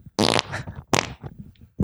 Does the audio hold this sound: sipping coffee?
no